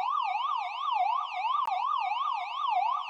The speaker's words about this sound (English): What? A police siren? Are we chasing down anybody? Yes, we are. We are on the manhunt for a murderer.